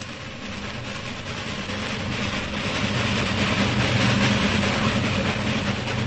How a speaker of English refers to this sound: He hears a train roaring through the night.